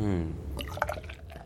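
Beer poured sloppily into a glass, leaving a big Coney Island head: a brief resonant gurgle gives way to a burst of splashy, fizzing spatters, moderately loud and lasting just over a second.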